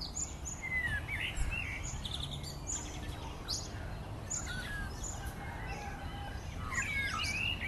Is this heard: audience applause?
no